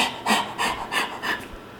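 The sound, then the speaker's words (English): A person imitates a dog panting with four quick, breathy rasps in a steady rhythm, each a short airy burst of hissing breath, moderately loud with no talking. “You know, if you have a dog, you know the dog panting.”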